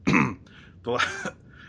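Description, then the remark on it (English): Two short, rough coughs, the second one more throaty and drawn out, separated by a brief pause with no talking. “stupid cough.”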